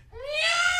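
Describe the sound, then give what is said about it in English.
A person imitates a peacock call with a single loud, rising wail, a strained, nasal cry that climbs in pitch and holds for under a second. “I can do a peacock, by the way.”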